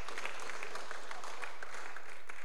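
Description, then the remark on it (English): A crowd applauds together to give the Lord praise, dense overlapping claps forming a steady, moderately loud wash of sound from a large group, with no voices standing out. “If you do, then let's give the Lord some praise.”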